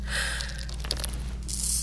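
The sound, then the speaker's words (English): A wet, squishing injection sound effect, for an injection given to a captain and timed with a launch, plays over a steady low hum, with a brief click midway and a soft hissing rush at the end. No one speaks. “That's still so gross to watch. The injection is timed with the launch.”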